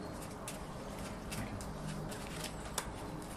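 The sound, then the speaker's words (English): Several soft, papery flicks of bullet cards being turned over during a card game, at an uneven pace, fairly quiet over a low hum, with one sharper snap near the end. “The bullet cards... Flip those over.”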